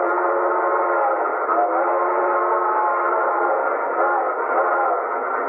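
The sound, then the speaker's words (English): A train whistle blows for a water stop three miles ahead in one long, steady, unbroken blast, loud and sustained with a rich chord of tones, with no voices. “the train blew for a water stop 3 miles ahead.”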